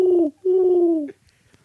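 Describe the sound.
A voice imitates a pigeon's cooing with two low, throaty coos, a short one and then a longer drawn-out one, loud, followed by quiet.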